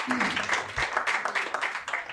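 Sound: audience clapping and cheering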